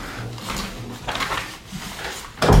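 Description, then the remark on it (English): Soft shuffling and handling noises give way to a door being pulled shut, ending in a single solid thud with a low boom. “You can pull that door in.”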